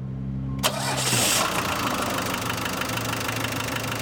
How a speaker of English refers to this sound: We're just filling up the Veggie Van with some biodiesel, which we made. And I've just got a little 12-volt pump here that I hook up to the engine and just sucks it right out of the jugs and right into the fuel tank.